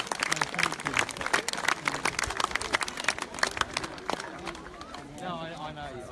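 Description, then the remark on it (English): An audience applauds itself at a Relay for Life event after completing a 20-hour relay, with dense, irregular clapping that holds steady for several seconds, mixed with scattered voices, before thinning out as a voice rises over the fading claps. “big round of applause for yourselves.”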